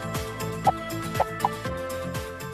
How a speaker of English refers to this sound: I think there's a chicken in the atrium. In the rotunda. Someone get that chicken out of the rotunda. I don't know what it's doing up there.